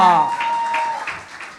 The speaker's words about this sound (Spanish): ¡De un aplauso!